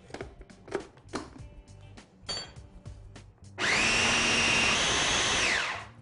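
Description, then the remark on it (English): Several scattered knocks and clatters, then a food processor roars to life, whirring loudly and steadily for about two seconds while it purees a batch of food before shutting off. No one speaks. “Another thing you can do instead of using the food processor, which I really prefer”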